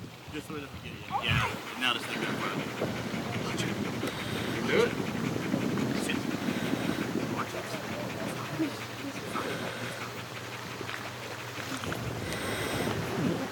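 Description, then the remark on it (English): A dog pants and growls in a steady, rough stream, with wind buffeting and voices murmuring in the background. “Dude, being near that dog is scary.”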